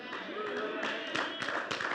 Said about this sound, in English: Thanks for the golf clap, but I'll keep going.